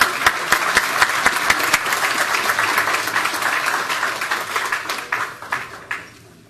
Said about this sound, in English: Let's have a round of applause for our healthcare heroes.